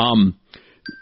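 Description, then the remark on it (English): An electronic medication alarm, a reminder to take pain medication, chimes, one bright tonal note sounding, then fading, followed after a short pause by another clear, steady high beep that begins to ring out. “Whoops, I got my alarm going off.”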